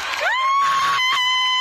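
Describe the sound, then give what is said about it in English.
A Broadway crowd cheers and roars loudly as Oscar winner Nicole Kidman hugs her pal Hugh Jackman after his Music Man hat is auctioned for charity, while a shrill whistle rises and then holds a steady high note above the noise. “The crowd went wild as the Oscar winner hugged her good pal, who was left speechless.”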